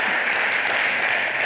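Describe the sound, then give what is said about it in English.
Steady applause from an audience, a dense, continuous wash of many hands clapping at once, fairly loud and even throughout with no voices on top. “This is going to take a long time if y'all keep clapping that many times.”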